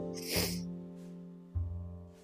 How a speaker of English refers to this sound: So forgive me for the sniffles, but I will not apologize for my tears, because I know there's many mourning.